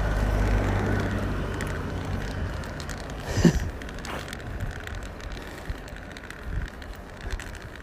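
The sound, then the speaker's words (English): A bus rumbles past outside, its deep engine drone strongest at first and then fading into steady outdoor noise, with a brief clunk midway and no one speaking. “Oh, there is a bus.”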